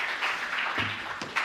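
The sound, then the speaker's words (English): A brief burst of audience applause for the boys and girls: many hands clapping in a dense, steady patter at moderate volume, with a faint voice briefly mixed in partway through. “Can we give the boys and girls a round of applause?”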